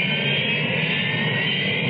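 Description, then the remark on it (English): A steady, loud Harrier jump jet engine roar fills the whole stretch, a dense continuous rush with a bright high whine on top and no voices. “It isn't a conventional jet, but it can match the speed of sound.”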